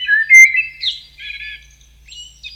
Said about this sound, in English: Beautiful sound. I love it. We're putting the spotlight on the birds in your garden.